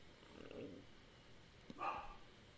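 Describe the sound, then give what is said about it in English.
A dog barks faintly, a soft muffled woof followed by a sharper, louder bark near the end, with no one speaking. “You can do the live stream with your dog.”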